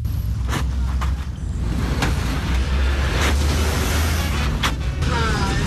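A vehicle rumbles steadily over a pothole-riddled road in Ghana, its low road noise broken every second or so by sharp thuds and jolts as the wheels hit potholes.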